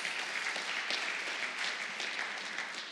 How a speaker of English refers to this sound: I'm so glad you joined us today because it's Easter. That deserves a round of applause. That's applause for Easter, yes.